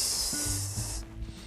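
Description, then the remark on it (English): A voice imitates a urine stream with a steady, bright hissing 'sss' that runs for about a second at moderate loudness, then cuts off abruptly into low background noise. “I'm always like going to the bathroom and pissing”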